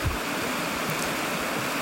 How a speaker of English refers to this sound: is being recorded on the edge of a creek in a cedar forest.